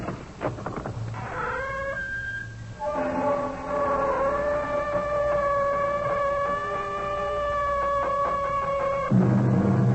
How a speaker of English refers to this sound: The sound of our door is not unlike what greeted the ear of the famous archaeologist Howard Carter when he opened the door of Pharaoh Tutankhamun's tomb.